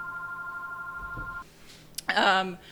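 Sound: telephone ringing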